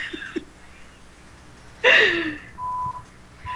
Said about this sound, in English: I just hear the beeps going on this TV right now.